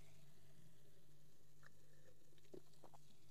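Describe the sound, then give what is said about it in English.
Quiet sipping of ginger ale from a glass: a few soft, wet slurping and swallowing sounds spaced over a few seconds against a faint low hum, with no talking. “So I'm just going to have some ginger ale and water today. He's a Lhasa. They just be doing too much. And of course, first sip.”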